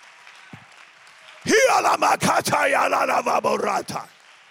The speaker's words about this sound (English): Your prayers, clap your hands and give God the praise.